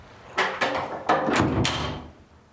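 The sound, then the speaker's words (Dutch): A door swings shut with a series of clunks and rattles, a few sharp knocks over about a second, then a final latch click that fades into quiet. No voices. “En dicht was de deur.”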